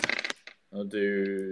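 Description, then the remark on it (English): Dice clatter briefly across a hard tabletop in a quick burst of sharp, rattling clicks, fairly loud, as hit dice are rolled during a short rest in a Dungeons & Dragons game, followed after a short pause by a person speaking. “Roll your hit dice.”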